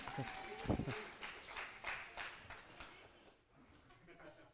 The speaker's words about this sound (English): Applause.